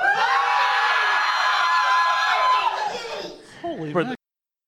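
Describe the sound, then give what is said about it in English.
A live convention crowd at LibraryCon 2018 cheers and yells loudly for about three seconds, with whoops and shouts rising above the roar, then fades into a few scattered voices before cutting off abruptly. “Make some noise. Let the folks at home know that you're here.”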